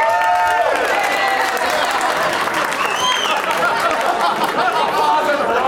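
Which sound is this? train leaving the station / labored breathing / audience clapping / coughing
audience clapping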